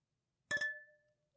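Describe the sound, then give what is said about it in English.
Glasses clink together in a toast: a quick double tap, followed by a bright, clear ring that fades away over about half a second. No voices are heard. “And we clink.”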